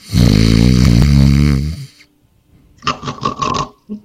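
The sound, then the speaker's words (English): A voice imitates loud snoring: a long, rumbling inhaled snore, a short pause, then a few quick raspy snorts trailing off. “I snuck upstairs. I went to bed. And I was snoring.”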